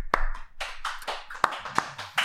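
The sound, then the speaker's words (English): A few sharp hand claps ring out unevenly, about four crisp slaps spaced across a couple of seconds, with a soft rustling hiss between them and no voices. The claps are given in place of a hip hip hooray. “So went for the clap, and the hooray was missed.”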